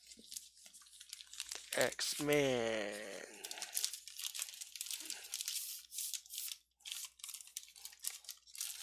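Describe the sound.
A plastic bag crinkles and rustles almost continuously, fairly loud, in irregular bursts as it's handled to bag a comic book, the Cable versus Strife final chapter, part 12 of Execution Song X-Force, with a man's brief speech partly overlapping.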